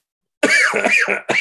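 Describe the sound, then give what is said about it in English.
A quick series of three harsh, raspy coughs, loud, with a brief pause before the last one; no talking. “And then with a fucking cough.”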